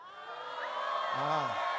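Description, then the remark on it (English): A crowd of young people in a church audience shouts and cheers during a sermon in a dense, steady roar, with one voice rising and falling in a loud whoop above the din. “Some of them are shouting, yeah.”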